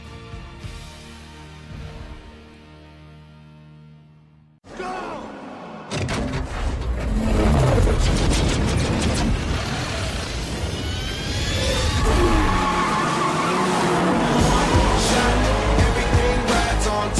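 A car engine drones, then roars loudly with rising and falling revs as tires screech and skid, mixed with sharp bangs and thuds, all intense with no talking.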